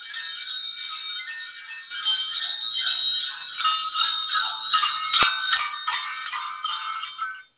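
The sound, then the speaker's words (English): Continuous shimmering bells ring together in a dense, sustained wash of bright overlapping tones, steady and fairly loud, with no voices, then fade out abruptly at the end. “You have those bells ringing within you.”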